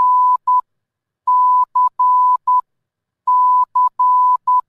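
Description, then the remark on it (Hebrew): Morse code beeps: a steady, mid-pitched tone keyed on and off in long and short pulses, forming three clear groups separated by brief silences, loud and clean with no voices. “בתחנת רדיו של הצבא האמריקאי, קוד מורס, שזה משהו שנשמע בערך ככה.”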